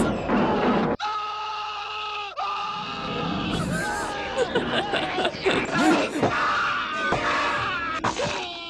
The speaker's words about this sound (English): Is it Evil Dead? Yeah. Is it the first Evil Dead? Yeah. Okay, just Ash getting hurt, basically. It was like every time Ash yells, I was like, that's okay. There was one of them that I was like, this sounds like Bruce Campbell.